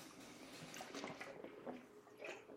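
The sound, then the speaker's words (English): Drinking sounds: a few wet gulps and sloshes of water in quick, uneven succession, fairly quiet, with no talking. “So good to the fact that I need a swig of water, pal.”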